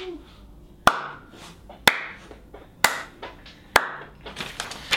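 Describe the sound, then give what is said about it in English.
A studio audience claps slowly and deliberately after a headline that The Fate of the Furious hit the $1 billion mark: four sharp, loud claps spaced about a second apart, followed by a scattering of softer, quicker claps. No one speaks over them. “Yeah, so our studio audience over there is applauding too.”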